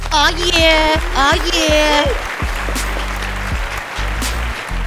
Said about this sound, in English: Ladies and gentlemen, it is Friday night, so you know what time it is. It's time for another episode of Friday Night Whiskey. Clap it up.